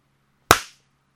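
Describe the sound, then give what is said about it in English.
One sharp hand clap with a crisp, bright snap and a short decaying tail, standing alone against a low steady hum. “Do you want me to clap because you have a broken wrist?”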